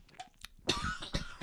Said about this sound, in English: Sorry. Bless you. That was a cough.